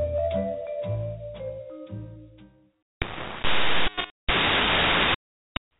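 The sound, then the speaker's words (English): A brief snatch of music cuts out, then loud bursts of harsh radio static hiss in two long blasts with a short gap between, ending with a quick crackle. “Wow, what solid static.”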